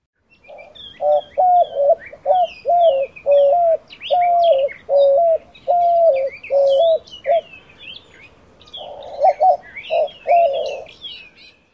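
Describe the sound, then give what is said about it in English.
A white-winged dove sings a steady run of hooting coos, pauses, then delivers a shorter burst of coos, while smaller birds chirp faintly in the background. “Our next bird is the white-winged dove.”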